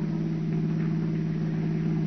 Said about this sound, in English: Listen to that motor purr, Peggy. Oh, it feels good to be at the wheel of a new car again.